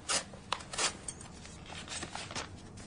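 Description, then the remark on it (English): Crisp paper sounds: a few sharp rasping strokes near the start as the envelope of a letter is slit open with a paper knife, followed by softer rustling and scraping. No voices. “If you would be so kind as to pass me over that paper knife.”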